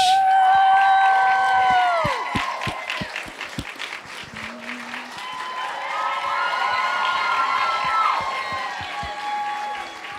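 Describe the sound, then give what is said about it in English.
A live show audience cheers and applauds loudly as the Bachelor is welcomed to the stage, with rapid clapping, high whoops and excited shouts layered together in a sustained roar that stays strong for about ten seconds. “Strong of a cheers.”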